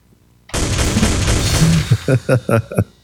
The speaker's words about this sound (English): Random gunshot. Random gunshots.